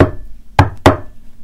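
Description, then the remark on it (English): Two firm knocks on a door, evenly spaced less than a second apart, each a sharp wooden rap against a quiet low background. “Can you find something to knock on? Knock on that door.”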